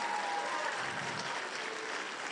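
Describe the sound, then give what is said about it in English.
An audience applauds steadily for the panelists of an Alaska World Affairs program, a dense, continuous wash of many hands clapping at an even, moderate loudness with no pauses and no one speaking over it. “Can we have a round of applause for our panelists today?”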